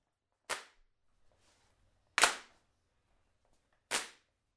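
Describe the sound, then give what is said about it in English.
Three loud, sharp hand claps, one clapped part recorded about 10 times and layered to thicken a song's percussion, land about every 1.7 seconds, each with a bright crack and a short smeared tail from the layering, with only a faint low hum between them. “So here's some claps I added to thicken up the percussion as the song builds.”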